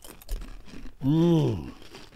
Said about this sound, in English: because they love the chewing and the crunching.